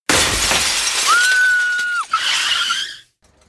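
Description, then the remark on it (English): A car's rear window, struck by a hatchet, shatters in a loud, sudden burst of breaking glass that fills the space, a dense crash with a sustained ringing tone, then a second spray of tinkling fragments before it cuts off abruptly. “Suddenly, something struck the back of my car, shattering the rear window.”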